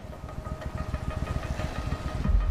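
A motorcycle engine runs steadily with a blindfolded rider on it, with rapid rhythmic low-end pulses and a throaty idle that swells slightly louder toward the end.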